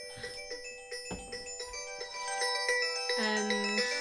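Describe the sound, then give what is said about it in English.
A bright, melodic electronic phone ringtone plays a chiming, tinkling tune that loops and grows slightly louder midway, with no talking over it. “Luke just got a phone call”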